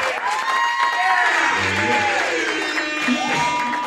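A live audience applauds and cheers continuously for a few seconds at a one-year anniversary celebration, with dense clapping and rising whoops and shouts layered on top, loud throughout.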